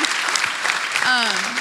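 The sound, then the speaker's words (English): Steady, dense applause from a crowd, a loud continuous wash of overlapping claps, with a voice starting to speak briefly over it near the end. “But can we just clap for that?”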